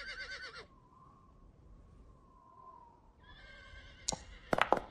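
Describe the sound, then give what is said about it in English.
A horse whinnies loudly, goes quiet with a faint drawn-out tone, then neighs again, ending in a few sharp, harsh snorting bursts. No one speaks. “His horse gets a spirit check.”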